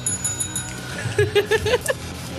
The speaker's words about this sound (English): Oh, but Battle Cry of Intoxicate, you get the final bell ring.